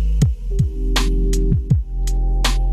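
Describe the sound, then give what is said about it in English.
A steady low electrical hum drones throughout, broken by several harsh bursts of crackling static and low descending thumps, loud with no voices. “Excuse the interference.”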